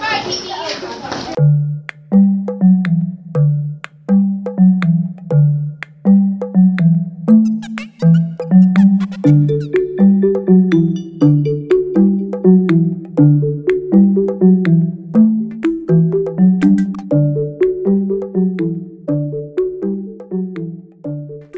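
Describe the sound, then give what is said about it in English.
An electronic school bell plays a long, steady melody of chiming tones, repeating its tune for about twenty seconds after a short burst of noise at the start. “All right, that's the bell, and we will see you.”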